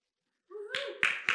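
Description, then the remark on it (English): Three sharp hand claps in quick succession, fairly loud, from a listener in the audience, over a brief vocal woohoo cheer from the same spot. “give me a woohoo or a clap or you got this.”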